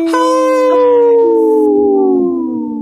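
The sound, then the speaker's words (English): A person's voice imitates a wolf howl: one long, loud, sustained tonal cry that slowly glides downward in pitch and fades at the end, with no other sounds around it. “Hey, I practice that howl.”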